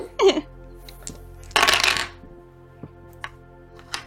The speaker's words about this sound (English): Sound like a lot of dice. It's fine. Oh, it's fine. As I hear multiple dice rolling on the table.